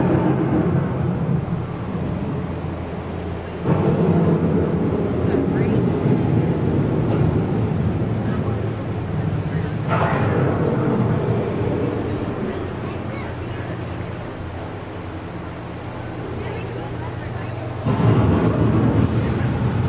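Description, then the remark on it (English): A loud, steady roar of strong wind with a deep low rumble underneath, swelling in gusts every few seconds as a storm closes in. No voices are heard. “The approaching storm may seem violent and destructive to us, but to nature, it's a new beginning in the cycle of life.”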